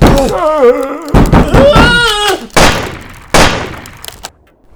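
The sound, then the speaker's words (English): Heavy, irregular thuds pound against a door as someone tries to get in, about three or four loud blows, mixed with a voice moaning and wailing over them. “You're trying to get in, you Rona bastard!”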